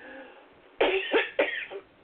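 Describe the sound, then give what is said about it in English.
A burst of harsh coughs, three or four in quick succession, loud and raspy, following a moment of quiet; no talking. “And I have a coughing attack.”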